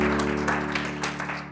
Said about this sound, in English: Yeah, you can clap for Jesus. Come on, put your hands together. Clap for Jesus.